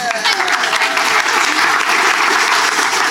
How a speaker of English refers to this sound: Round of applause.